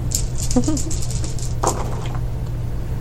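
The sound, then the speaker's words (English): A quick flurry of light clattering clicks as several dice, including a twelve-sided die and ten-sided dice, tumble and roll, ending in a sharper knock around the middle before settling, over a steady low hum. “And then I'm doing illusion, so that's another D10. I have so many dice, there they are.”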